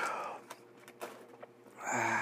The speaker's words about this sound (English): Yawning already. Mercy, that's not good.